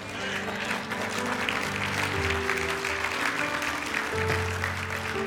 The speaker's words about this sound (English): I'm so happy to see my nutritionist and fitness trainer clapping because I was sure he was going to jump up and say, Pastor, no, enough with the French fries already.